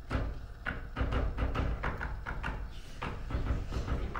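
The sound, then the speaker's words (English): A rapid run of knocks on a door, about ten sharp raps in an uneven, patterned rhythm, fairly loud over a low background rumble. “knocking at the door”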